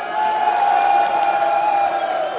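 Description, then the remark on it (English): A crowd cheers and claps for a journalist guest in a steady, continuous roar of approval, fairly loud and sustained for a couple of seconds with no clear pauses. “Let's give you a round of applause.”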